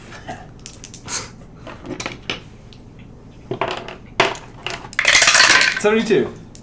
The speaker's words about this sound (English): Alright, go ahead and roll a D100, which I just guess that, and then fine.